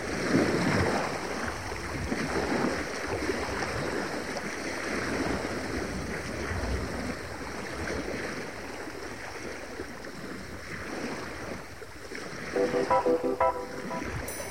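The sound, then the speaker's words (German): A ship is steered slowly and carefully through gentle sea water among many reefs on a clear, moonlit night in the southern hemisphere, with a continuous wash and splash of waves against the hull and a brief tonal hum near the end. No one speaks. “manövriert sehr vorsichtig sein Schiff hier durch die vielen Riffe.”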